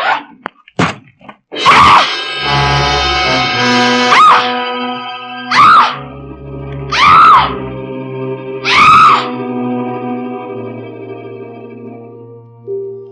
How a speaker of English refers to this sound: I stopped screaming finally and felt better for it.